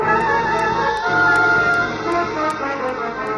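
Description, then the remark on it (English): A police car pulls up in front of a bus station, its engine rumbling under a steady, layered siren-like wail with faint regular ticking on top. Loud and continuous throughout, with no talking. “The police car pulling up in front of the bus station starts you on the run again, doesn't it,”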